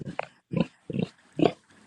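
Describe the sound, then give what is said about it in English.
A large male pig grunts four times in a steady rhythm, deep, rough snorts with short pauses between them and no one speaking. “So he's another one of our large pigs.”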